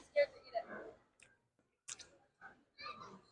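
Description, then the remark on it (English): Wet, clicky chewing sounds of someone eating mango skin into a microphone come in a few uneven bursts with short pauses between, fairly quiet, with a murmur of voice-like sound at the start. “Are you getting the chews on the microphone?”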